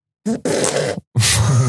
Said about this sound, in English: If it is objectively funny, which I think farting is objectively funny, then I'm jaded to this. I don't laugh. That fart did not even make me smile.